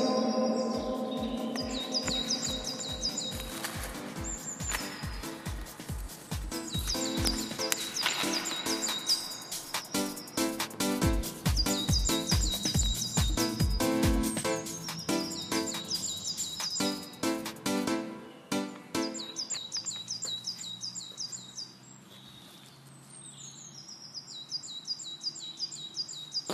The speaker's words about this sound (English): Little bird up the tree. It's cool. He was right next to me, and then he flew off when he saw me.